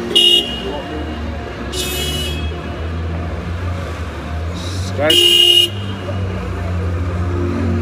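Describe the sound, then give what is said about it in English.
Car horns honk in several short, irregular blasts, one of them loud, over the steady rumble of traffic on Rideau Street in Ottawa at 11:30 on a Saturday night, with faint voices in the background. “The girl doing most of the honking looked like a boss.”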